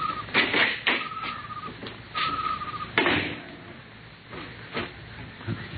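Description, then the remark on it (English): A small side door of a silo opens in the dark with a couple of drawn-out creaks and several clunks and thuds of the latch and frame, against quiet. “Here's the door.”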